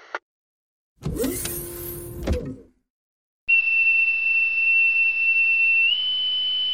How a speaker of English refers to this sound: Central, lock seal verified. All systems nominal. Stand by for hatch opening.